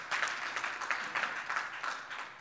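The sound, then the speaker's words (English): A church audience claps together as a clap offering to the Lord, a dense, steady burst of applause with many hands overlapping into a bright, crackling wash and no voices. “Again, I think that's worth a clap offering to the Lord right there.”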